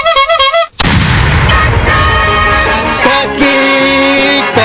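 A brief high, warbling tone cuts off and a loud cannon blast booms out, followed by several seconds of deep rumbling mixed with sustained ringing tones.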